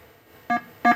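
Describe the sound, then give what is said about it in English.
Two short electronic beeps from a primitive 1977 video game, each a bright buzzy tone with stacked harmonics, the second slightly louder, separated by a brief quiet gap, and a third starting at the end. “Well, the sounds are pretty primitive. You just got that little beep, that's about it.”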